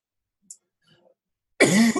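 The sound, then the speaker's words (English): A brief click, then a loud, harsh cough that rasps into a throat-clearing rumble near the end, with no one speaking. “Do you need to take a second to clear your throat?”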